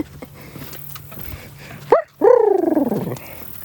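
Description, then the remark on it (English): A dog gives a quick sharp yelp, then a longer, loud, wavering bark that warbles downward in rapid pulses, almost gobble-like, over a low steady background hum. “That turkey dog, excuse me. That's a turkey dog.”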